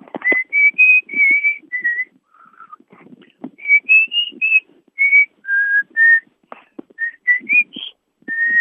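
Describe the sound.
A grandfather whistles a bouncy pop melody by the Clydeside, with clear sustained notes and short phrases separated by brief breathy pauses, no one speaking.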